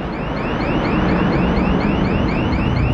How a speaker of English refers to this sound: You hear that? How can you hear anything over that alarm?